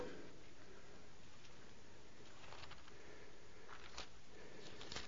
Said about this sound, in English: Hear those pages turning? That's a great sound. Isaiah 7, or page 636, and we're going to look at verse 14.